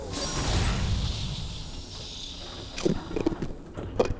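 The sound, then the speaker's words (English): A cargo loading ramp opening on arrival: a heavy, low mechanical rumble and grinding that eases off, followed by a few sharp metallic clanks and thumps near the end. No voices. “The loading ramp's opening.”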